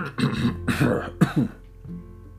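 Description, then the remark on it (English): A man coughs several times in a quick, throaty series, fairly loud, then the sound trails off into near silence. “Mr. Brown coughed.”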